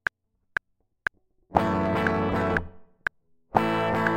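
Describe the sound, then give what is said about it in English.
Four sharp ticks keep time while an electric guitar, hard-compressed at a -22 threshold, 20:1 ratio and zero attack, strums thick distorted chords in two bursts, the volume held flat and dense with a gritty, buzzing edge. No one speaks. “You can actually hear distortion in it.”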